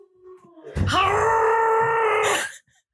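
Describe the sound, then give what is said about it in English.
A female pet lets out one long, loud howl that swoops up and then holds a strained, moaning pitch for nearly two seconds before cutting off, with no talking over it. “Why does she sound like a baby dying Chewbacca every time she howls?”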